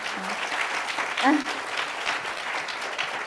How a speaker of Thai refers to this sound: ดังนั้นต้องแบบขอบคุณแล้วก็ขอเสียงปรบมือให้กับคนที่มีอัพไลน์ทุกวันนี้ด้วยค่ะ